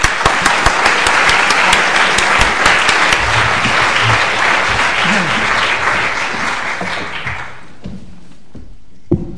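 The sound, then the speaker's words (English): An audience at a book launch applauds the participants with dense, steady clapping that stays loud for about seven seconds, then thins out and fades, ending with a few scattered claps and a soft thump. “So if I could ask you to give a big warm round of applause to our participants”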